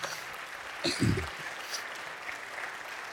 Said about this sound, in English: Thank you all. Yeah, could you give her a round of applause?